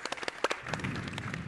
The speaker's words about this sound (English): And I bet people don't say thank you nearly enough for the amazing work you do. So I'm going to start with a round of applause for all that you all do.